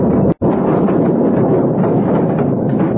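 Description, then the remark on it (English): A loud explosion of blasting powder, set off with a lit fuse, blows a store door clean off. It erupts into a sustained, rumbling roar that lasts several seconds after a brief instant of silence, with no voices. “They prepared the blasting powder, lit the fuse, then stood back, waiting for the explosion.”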